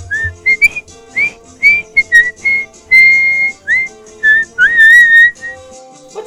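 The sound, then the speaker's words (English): A man whistles a lively tune as he walks to his 2005 Honda Civic at 5 o'clock, a string of clear, bright notes in short rising and falling phrases, some sliding between pitches, with no talking. “Horace whistled his way to his 2005 Honda Civic.”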